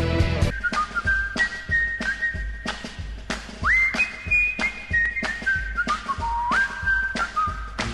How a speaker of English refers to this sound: Let's all go along and whistle a song the way the happy whistler goes. It makes you feel like laughing all over from your head down to your toes.